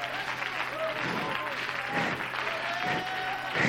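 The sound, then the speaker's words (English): A church audience claps hands unto God in worship, a dense, sustained wash of applause, steady and fairly loud throughout, with faint voices mixed underneath. “Oh, somebody clap your hands unto him.”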